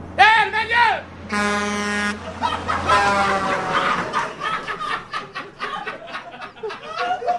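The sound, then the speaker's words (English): A loud, steady truck air horn blares once for just under a second, after a brief warbling cry, as passing truckers honk in support of a man whose truck is stuck under an overpass, then gives way to overlapping voices and busy background noise. “And I understand truckers everywhere were going by showing support.”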